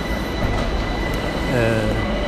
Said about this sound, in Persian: اومدم تو مترو